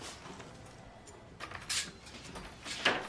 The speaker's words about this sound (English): Door.